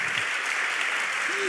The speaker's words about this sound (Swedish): En applåd för det.